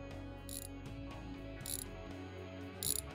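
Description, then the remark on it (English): Three short, bright ratcheting bursts arrive at roughly even intervals while the door of a metal craft in the sky is adjusted, each a quick metallic clicking rasp over a low, steady mechanical hum. “I'm adjusting the door.”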